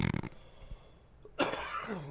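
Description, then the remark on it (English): Two sharp coughs with a short quiet gap between them. The second is louder and trails off into a rough, voiced rasp. “You coughed right in my eye.”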